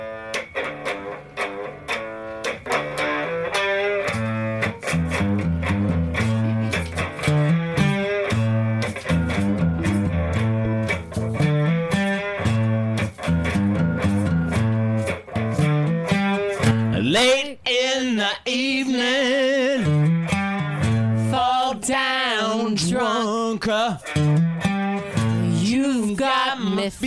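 A loud, distorted rock song played as outro music for the Mike and Judy show, with pounding drums and a thick, driving bass riff; midway through, a wailing sung vocal comes in over the steady, heavy groove.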